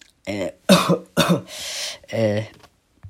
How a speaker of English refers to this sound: I don't have corona, just coughed.